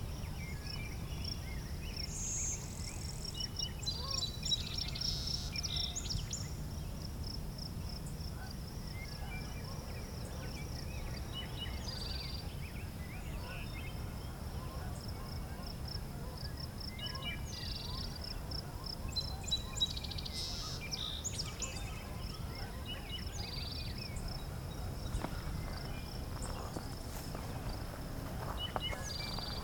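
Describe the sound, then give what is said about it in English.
Faint, distant wood thrush song drifts in as short flutelike phrases at intervals over a steady high insect hum and low outdoor rumble, with no one talking. “As you might hear, I have a wood thrush pretty far off.”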